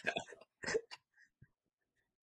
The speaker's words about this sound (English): you can't belch in the middle of our show.